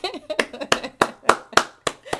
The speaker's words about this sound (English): I want to clap on that because it is a tremendous, wonderful experience, and it's more.